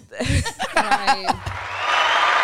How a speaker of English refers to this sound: Where's the round of applause button? Because you got to have that.